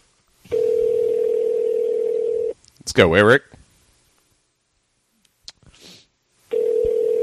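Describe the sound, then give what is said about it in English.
A phone call placed at 1 o'clock ringing out: a steady, low-pitched ringback tone sounds in two long bursts, with a short stretch of someone speaking in the pause between them. “Oh, it looks like we're gonna miss. It's keeping us in suspense.”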